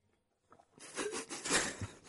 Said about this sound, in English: Oh, no, I was clapping.